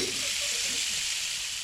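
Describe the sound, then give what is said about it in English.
A hot item just out of the oven sizzles and hisses steadily for a second and a half as it burns a hole in the floor, a bright, crackling fizz that stays even in loudness throughout, with no talking over it. “It's burnt a hole in the floor.”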